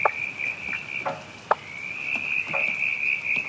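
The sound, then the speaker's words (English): In Western Victoria, a steady chorus of brown tree frogs creaking on a high continuous note, with a few sharp, sparse pops from one or two striped marsh frogs scattered through. No voices. “you can just hear one or two striped marsh frogs popping.”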